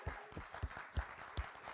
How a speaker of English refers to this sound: So I want us to give them a round of applause now. Can we do that? Okay? Woo!